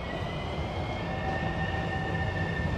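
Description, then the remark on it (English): A Metrorail train passes at the Arlington Heights Metrorail, a steady, loud roar of wheels on track with thin metallic whining tones riding above it. No one speaks. “And while we're standing here, you may hear a train go by because we are at the Arlington Heights Metrorail where this installation is.”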